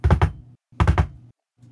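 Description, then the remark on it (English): Sharp knocks on a wooden door: two quick raps, a short pause, then a firmer run of three, each with a low, hollow resonance, followed by a faint stray tap. “About that time that you hear a knock on the door again.”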